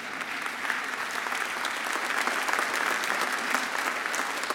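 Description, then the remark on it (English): A crowd claps steadily, a dense, even patter of many hands that holds for several seconds without any voices over it, applauding a church's giving to its local and global mission partners. “Somebody should either say amen or clap a hand to that.”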